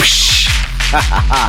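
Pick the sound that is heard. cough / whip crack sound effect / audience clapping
whip crack sound effect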